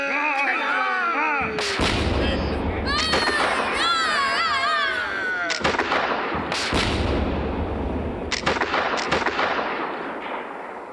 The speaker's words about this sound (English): She still has no stronger colors, Captain. Shall we give one more broadside and finish the pig?